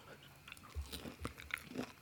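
A crisp crunch of teeth biting into something juicy like a raw vegetable, followed by a few wet, crackling chewing sounds, quiet.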